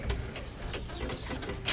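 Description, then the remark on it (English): Faint bird chirps from outside an open window come through over a low, steady hum, a few brief high calls scattered across the moment with no one talking. “But it is warm in here, but you do hear birds in the background.”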